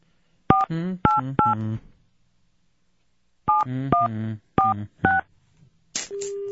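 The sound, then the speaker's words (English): Telephone keypad tones beep clearly as someone dials a governor's office, starting with 1-850: three quick presses, a pause, then four more, followed by a steady electronic tone at the end. “How do I dial on this thing?”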